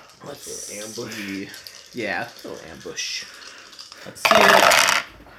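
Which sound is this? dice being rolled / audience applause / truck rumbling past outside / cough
dice being rolled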